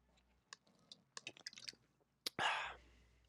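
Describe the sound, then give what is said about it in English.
Wet mouth sounds: a scatter of small clicks and smacks from sipping a Pepsi, then a sudden loud, breathy gush of air after the swallow. No one speaks. “Time for a Pepsi break.”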